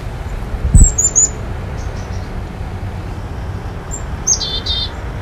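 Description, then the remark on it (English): A black-capped chickadee gives two short bursts of high, thin call notes a few seconds apart over a steady low outdoor rumble. “raptors like the small pygmy owl and the American kestrel, which are more maneuverable in flight and thus better at hunting small birds, provoke more D's at the end of a call, resulting in more chickadees mobbing together to defend themselves.”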